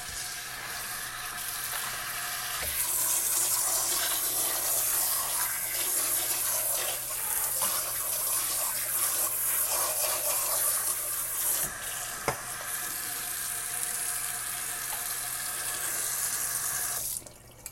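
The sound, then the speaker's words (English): A faucet turns on and water runs steadily for about fifteen seconds while something is rinsed under the stream, with faint shifting splashes, before the tap shuts off abruptly. No one speaks. “Okay, I'm gonna use the wringer to wring out what I just cleaned out.”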